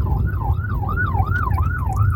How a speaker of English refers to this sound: Sorry, there's an ambulance. Pull over for the ambulance.